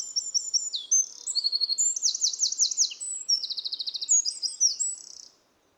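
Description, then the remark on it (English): A wren sings a long, rapid, high-pitched song of trills and bright chirps, delivered loudly for about five seconds before stopping abruptly. “Now you listen to the song of the wren.”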